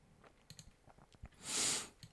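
Quiet, irregular clicking of keyboard keys, a few scattered taps with a brief breathy hiss midway, as someone types in short bursts to look up the film The Big Doll House.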